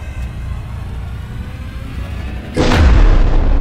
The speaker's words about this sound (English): Somewhere below us, I hear one of the explosions go off, and I scream out of frustration.